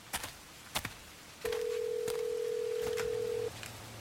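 A few quick clicks of phone buttons being pressed, then a steady mid-pitched ringing tone holds for about two seconds before cutting off, with no voices.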